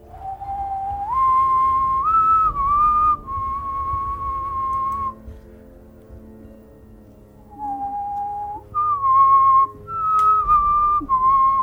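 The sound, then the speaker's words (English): A person whistles a short melodic tune in clear, sliding pitched notes, pausing midway before a second phrase, fairly loud with no talking. “I whistle back.”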